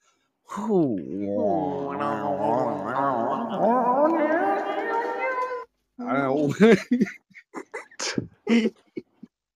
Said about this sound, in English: He's getting more and more of that cat getting lobbed over the fence.